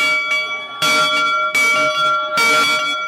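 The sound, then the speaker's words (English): A heavy locomotive bell clangs loudly, struck about four times at a steady pace, each ring leaving bright metallic tones that hang between strikes. No voices. The bell comes from a locomotive that once delivered coal to Pueblo's CF&I steel mill and is the trophy of the Centennial–Central high school football rivalry. “And for the last 67 years, the Centennial Bulldogs and the Central Wildcats have battled on the gridiron to claim a special trophy known simply as the Bell.”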